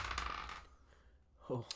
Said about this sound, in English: So you're going to roll your d20. Okay. Here's your 20-sided dice.